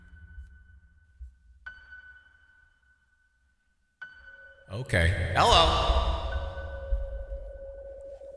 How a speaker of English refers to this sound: Let's add some reverb.